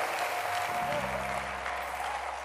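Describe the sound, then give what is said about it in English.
A church audience claps its hands together in dense, continuous applause that fills the space, with faint sustained tones humming low in the background. “Anybody that can clap your hands, something is happening to you.”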